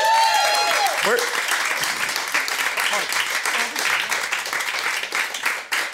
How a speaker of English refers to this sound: So give a big round of applause here for the wonderful Sharon Mannion.